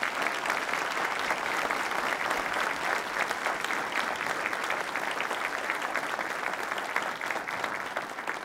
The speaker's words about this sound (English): Will you please join me in giving a round of applause to our panelists?